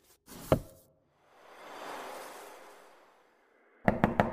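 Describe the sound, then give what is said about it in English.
A quick burst of three sharp knocks on a door comes at the end, preceded by a single heavy thud and a soft, rising-and-falling whoosh in between. “I knocked this time.”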